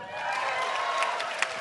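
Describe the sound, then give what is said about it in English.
Steady applause from an audience fills the short stretch, a dense wash of clapping with a few sharper claps near the end and faint cheering voices mixed in. “You normally applause at that point.”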